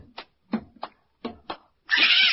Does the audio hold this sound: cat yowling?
yes